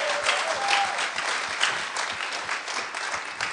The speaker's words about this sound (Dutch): Come on, give the Lord a hand. Laten we God een geweldige applaus geven.